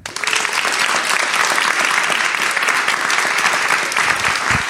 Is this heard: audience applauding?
yes